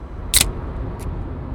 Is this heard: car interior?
yes